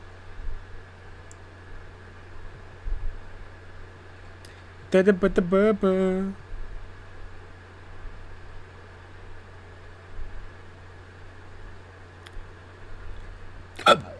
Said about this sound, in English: Oh, excuse me. I did a hiccups.